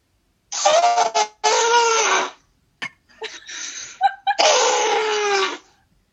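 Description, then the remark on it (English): A person imitates an elephant trumpeting with loud, brassy, wavering blasts, several long blares separated by short gaps and a few sputtering vocal bursts, with no talking in between. “I can actually make an elephant noise.”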